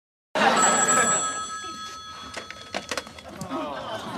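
A telephone bell rings loudly, one sustained metallic trill that starts abruptly and fades, followed by a few clattering knocks and rustles.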